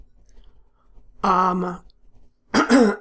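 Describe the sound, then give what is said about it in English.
A person coughs twice: a rough, voiced burst, a short pause, then a second sharper cough, with quiet background between them. “Just leave that cough in.”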